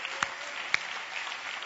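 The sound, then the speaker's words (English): A crowd claps together for the love of God in a steady, dense patter of applause, with a couple of sharper, louder claps standing out near the start, without any talking. “Come on, give a hand clap for the love of God.”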